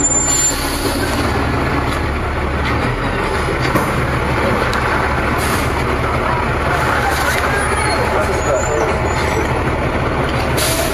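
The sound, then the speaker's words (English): A large bus engine idles steadily at a stop in the rain, a loud continuous low rumble with a hiss of air, while indistinct voices murmur. “No, but the driver was implying we should get the first bus.”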